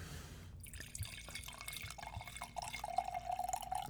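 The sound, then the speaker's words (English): A drink pours steadily into a glass in a bar, a continuous splashing gurgle whose pitch rises slightly as the glass fills, starting after a brief moment of quiet. No one speaks. “So why don't you hit him with the pour?”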